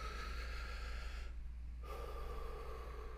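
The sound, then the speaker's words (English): A deep, deliberate breath drawn in slowly as a paced breathing exercise mimicking a drag on a cigarette, airy and steady, with a short pause partway before it continues. No one speaks. “Do the breathing exercise. It's literally mimicking smoking a cigarette.”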